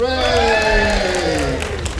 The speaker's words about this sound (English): First time Petersfield's had two potential town criers, and they ought to give them a really big cheer and a thank you.